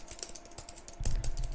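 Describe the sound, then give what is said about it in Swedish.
Rapid computer keyboard typing, a steady patter of clicky keystrokes, growing louder and denser in the second half with a low thump underneath. “Skriva på tangentbordet.”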